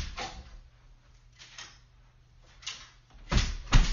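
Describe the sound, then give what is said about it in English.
An unlocked front door being opened: a few soft rattles and scrapes of the handle, then two heavier thuds near the end as it swings open, over a faint low hum. “Oh, it's unlocked.”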